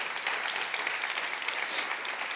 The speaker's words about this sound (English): I like the way if you want to clap, go ahead. That's good.